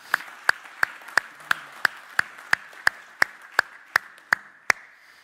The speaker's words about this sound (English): If you believe that, put your hands together and clap to Him right now.